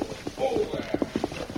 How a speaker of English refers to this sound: they heard a horse approach and stop outside.